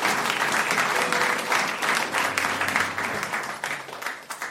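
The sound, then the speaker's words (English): A crowd at a church service breaks into sustained applause for the parents of a child just dedicated, many hands clapping densely and steadily for several seconds at a fairly loud level, with a faint hum of voices beneath. “A round of applause for the parents.”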